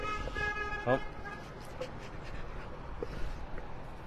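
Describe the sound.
A car horn honks briefly near the start at a police sergeant in Cranston, a sustained tone lasting under a second, then fades into steady outdoor traffic noise with faint voices in the background.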